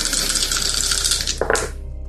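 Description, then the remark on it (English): Four dice rattle and clatter across a table for about a second and a half, ending in a brief louder knock before going quiet. It is fairly loud, with no talking. “That would give you four dice to roll to catch up to this person.”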